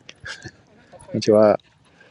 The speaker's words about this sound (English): Two dogs passing by.